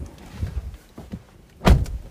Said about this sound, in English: Sorry, I'm getting in my car here.